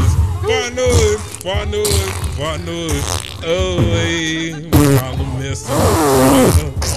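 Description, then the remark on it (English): A person blows a rapid series of loud, sputtering raspberry-style fart noises with their mouth, one long wet run after another, with no other sounds. “That was my best fart noises performance ever.”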